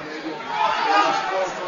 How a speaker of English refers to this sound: Crowd not happy, thought he picked it up off the ground, but it looked good.